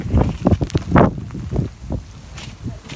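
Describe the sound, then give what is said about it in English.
Strong wind gusts roar and buffet against the microphone in uneven, rumbling bursts on a rainy, foggy mountainside, at the ninth station. The rain is buried beneath the wind, and no one speaks. “It's raining and it's windy. It sounds terrible.”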